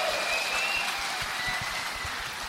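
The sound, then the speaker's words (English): Steady applause from a theatre audience, a dense wash of many hands clapping at once, holding a fairly even loudness for a couple of seconds with no voices standing out. “Round of applause for that, everybody.”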